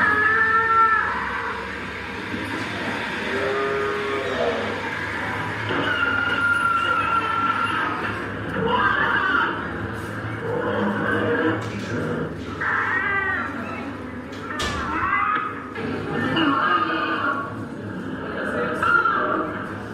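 Recorded animal screams played aloud by a vegan activist walking through a McDonald's play steadily through the whole stretch, shrill wavering cries rising and falling in pitch, layered over a constant low background hum and indistinct murmuring.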